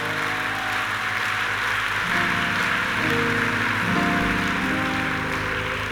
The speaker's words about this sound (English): Are you clapping? If you are clapping, you better clap.